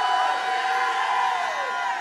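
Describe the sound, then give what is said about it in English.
An audience shouts and cheers together in a dense, continuous roar of many voices, with whoops rising through the steady wall of noise for the whole two seconds. “If that's you, jump up and shout like you never shouted in your life.”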